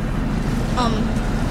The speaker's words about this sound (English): Sounds like a boat engine. It does. It is.